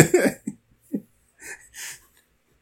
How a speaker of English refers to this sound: But you just said, God bless you when I sneeze.